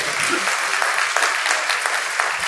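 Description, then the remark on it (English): A crowd breaks into steady applause, giving God a hand clap, many hands clapping at once in a dense, bright, even wash of sound that holds at a constant level throughout. “If y'all know God has blessed us in this country, why don't you say amen and give God another hand clap?”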